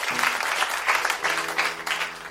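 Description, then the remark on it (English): A round of applause from a group, dense overlapping claps rising and falling in steady waves for a couple of seconds, with a low hum underneath. “A round of applause.”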